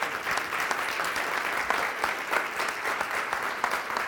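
An audience gives God a hand clap, clapping steadily for about four seconds, a dense, even patter of many hands with crisp individual claps popping through, fairly loud and with no talking over it.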